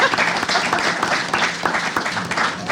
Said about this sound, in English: All right, let's give him a hand. Come on, huh?